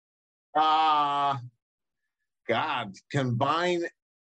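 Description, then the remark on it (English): A dog gives a strained, donkey-like vocal call: one steady, droning cry lasting about a second, a pause, then two shorter wavering, braying bursts, loud and alone. “She thought it was a donkey, but it was a dog.”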